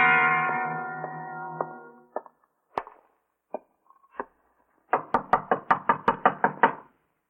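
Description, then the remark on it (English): A few scattered thumps follow a fading tone, then a rapid, forceful series of about nine loud knocks by police on a door at number 11 Bank Street, Greenwich Village, with no voices. “Come on, open the door. This is the police.”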